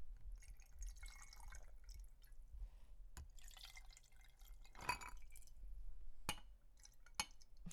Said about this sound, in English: A little dribble on the side. That's right. For luck. Pour it out, baby.